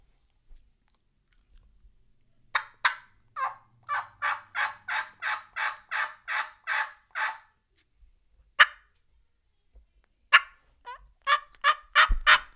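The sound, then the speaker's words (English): A hunter imitating a hen turkey's cuts and yelps: a steady run of about a dozen raspy yelps, then a couple of sharp, isolated cuts and a fast closing burst, loud with no talking. “So a couple cuts and a yelp.”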